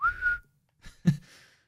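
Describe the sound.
A single short, shrill whistle blast like a small safety whistle, steady, followed after a pause by a dull knock and some faint rustling.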